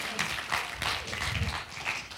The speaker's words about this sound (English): You did a wonderful, give him a hand clap. He did a wonderful job.